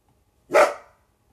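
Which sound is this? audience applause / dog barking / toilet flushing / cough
dog barking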